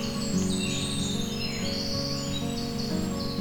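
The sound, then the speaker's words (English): A winter wren, a tiny brown bird, sings a long, rapid cascade of high, bubbly trills and twitters, continuous and bright, over a steady low tonal drone in the background. “Their songs are a loud and bubbly cascade of bright and cheery-sounding musical phrases, lasting anywhere from 5 to 10 seconds on average”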